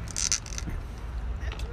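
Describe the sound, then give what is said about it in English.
A corkscrew, driven all the way down to avoid splitting the cork, works the cork out of a wine bottle: a short burst of squeaky, scraping creaks at the start, then quieter gritty rubbing over a low background rumble. “I'm trying not to split the cork, so I'm trying to go all the way down.”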